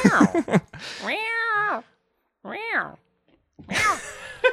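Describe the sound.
A cat meows twice at a person, a long drawn-out meow followed after a pause by a shorter one, with bits of human talking at the start and end.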